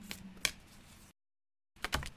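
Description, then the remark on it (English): A Sacred Destiny card deck being shuffled: crisp papery riffling with a couple of sharp snaps, a second of silence, then another brisk burst of shuffling. No one speaks. “Let me shuffle these again because every moment different.”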